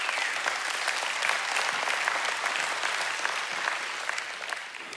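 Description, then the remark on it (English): A crowd applauds steadily for several seconds, a dense, even clatter of many hands clapping at once that holds its loudness throughout and eases only slightly at the very end. “Let's cheer to that.”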